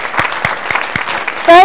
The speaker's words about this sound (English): If you are willing, would any veteran willing to stand up and allow us to recognize you? I say we applaud.